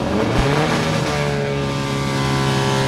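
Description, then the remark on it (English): Several Penske race car engines rumble and rev as the cars go out onto the track, a steady, loud mechanical drone with rising harmonic tones as they pull away, no voices. “Well, one of the great features of this weekend is the commemoration of Roger Penske's career, and the Penske cars are just going out on the track now.”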